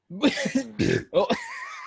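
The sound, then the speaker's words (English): A rumbling burp breaks out in the middle of a few short bursts of laughter, all packed into under two seconds with a lingering voiced tail. “I just burped and laughed.”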